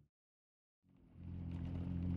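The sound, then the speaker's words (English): After a moment of silence, Charles's pickup truck, packed with tools, food, camping gear, hiking equipment and books, rumbles to life on an early June morning before sunrise and grows steadily louder into a deep, droning hum as it sets out on a five-hour drive to a campsite, with no voices. “June morning, before the sun had crested over the horizon, Charles packed his truck with tools, food, camping gear, hiking equipment, and books, and set out on the five-hour drive to the campsite he planned to call home for the next 2 weeks or so.”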